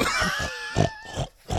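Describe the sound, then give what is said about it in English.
A pig oinks and grunts in a quick series of about five short, snorting bursts, fairly loud, with a faint steady tone lingering in the background. “He's the most toxic pig in the pen.”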